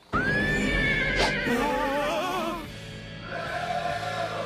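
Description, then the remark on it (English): A horse neighs loudly, a long shrill whinny that wavers and trembles before fading into a lower, rougher tail with some background noise. “Didn't know Freddy had a horse.”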